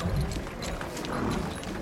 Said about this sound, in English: So as you arrive at the guard post, you do find a small little area on the side of the road to stop the wagon and the two horses.